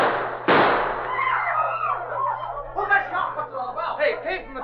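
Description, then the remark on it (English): One sharp, loud gunshot, fired at a man who is not hit, cracks out about half a second in, its echo fading quickly, followed by several seconds of agitated, overlapping voices talking. “Oh, nobody's going to take pot shots at you and get away with it.”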